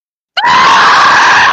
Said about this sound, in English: Why you scream at the start of every podcast?